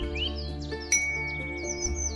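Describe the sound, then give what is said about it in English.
Many small birds, a flock in a park picking up bread, chirp and tweet in quick, overlapping calls, layered over a steady low musical hum that continues throughout. “Tantos pájaros, Abuela says, as a flock of birds surround us. So many birds. Tweet, tweet, tweet.”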